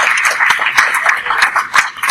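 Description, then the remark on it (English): An audience applause track: a dense, continuous wash of many hands clapping with a few sharper claps standing out, loud, with no voices. “We'll add an audience applause track.”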